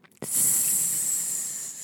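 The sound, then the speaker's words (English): A snake gives one sustained, sharp hiss that starts abruptly and holds steady for nearly two seconds, loud, with no voices. “Hear the snake's hiss.”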